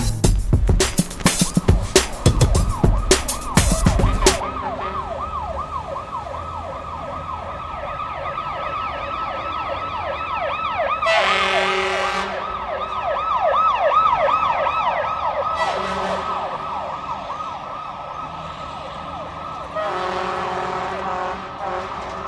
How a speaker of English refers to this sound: When you hear a siren, what's the first thing that comes to your mind? Sirens are a reminder of a powerful reality.